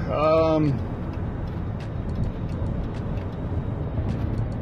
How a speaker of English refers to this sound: Anyway, yeah, so we made it out of that traffic jam. We're okay. We're on another major road now. We're moving along.